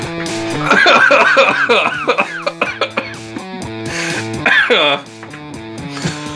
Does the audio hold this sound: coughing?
yes